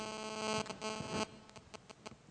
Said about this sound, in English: Something's humming. I don't know if that's me.